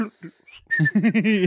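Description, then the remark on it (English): A person whistles a brief, casual little tune: a thin tone sliding upward, then a few wavering notes. It lasts only a second or so, with no other sounds. “And, they'll just walk away like whistling.”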